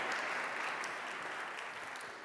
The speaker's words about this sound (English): So thank you. Give these people a clap. So brave. Thank you.